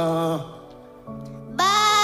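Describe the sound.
A voice imitates a sheep with wavering, bleating calls: a nasal 'baa' that fades, a lower held tone, then a louder, higher quavering bleat to close, with no other sounds.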